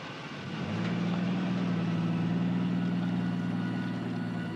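A car engine idles with a steady, low droning hum that swells slightly after the first second, then holds even, as the car backs out on a road that was a solid mud track, filmed in December or January. No voices.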